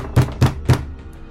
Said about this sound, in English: And the knock at the door happens again, louder.